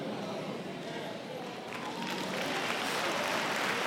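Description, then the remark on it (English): An audience claps steadily for several seconds during a sermon, a dense, even patter of many hands that swells slightly louder toward the end, with faint voices mixed underneath. “Come on now, I know you don't like my sermon, but you better clap.”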